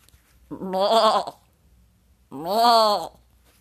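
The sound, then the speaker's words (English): A goat bleats twice, each call long and wavering with a nasal, quivering tone, separated by a short pause. Both calls are loud, with no other sounds around them. “Let's see what the Inspiration Goat's got for us this week.”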